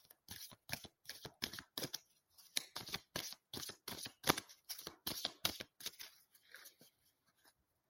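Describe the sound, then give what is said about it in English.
Tarot cards being shuffled, a quick run of crisp riffling slaps and flutters in an uneven rhythm, tapering off near the end. No one speaks. “So I'm feeling to shuffle again, so I will.”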